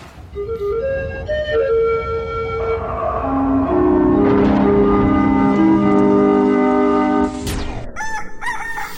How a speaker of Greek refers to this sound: Σου βγάλαμε κόκορα. Ναι, πήγα να ξεκινήσω και έμεινα με το στόμα ανοιχτό. Ναι, γιατί είδα εδώ ένα tab που λέει weather. Weather. Ναι, αλλά είναι με κόκορα.